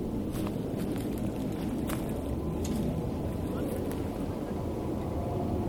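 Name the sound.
airplane flying overhead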